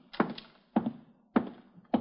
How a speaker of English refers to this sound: Now open this door, I'll have Otis kick it in.